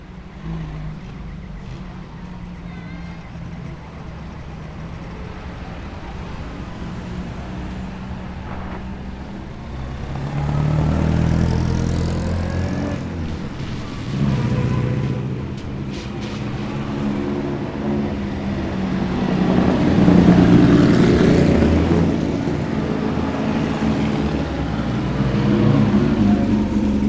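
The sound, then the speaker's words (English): Several vintage cars, including a Blower Bentley, rumble past one after another in the rain in a procession onto Longbridge, behind the ex-chief constable of West Yorkshire's car, their engines swelling louder as each draws near, with deep low throaty tones and occasional revving, without any talking. “Here come the first cars onto Longbridge, forming up behind the ex-chief constable of West Yorkshire's car.”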